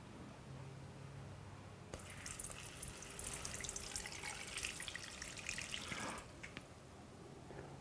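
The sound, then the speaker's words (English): Dry ice bubbling in a bowl of water starts abruptly: a steady churning fizz with crackly pops that lasts about four seconds before cutting off, leaving quiet background hum. “Now it's a bubbling witch's cauldron.”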